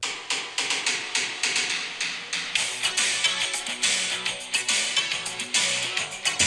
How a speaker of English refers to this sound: Let's listen. This is the most '80s song.